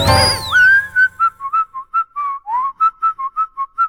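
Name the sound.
person whistling a song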